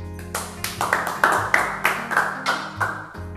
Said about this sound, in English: Clap.